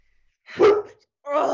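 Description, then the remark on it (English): Two short, loud barks from a dog, separated by a brief pause, each a sharp burst with a strong harmonic ring and nothing else in the background. “Any dog owners who tag me in a post and help me out with this, where he barks all the time at everything.”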